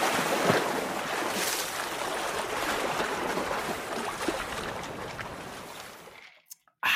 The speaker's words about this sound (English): Let the water go. Have a sip while that's happening.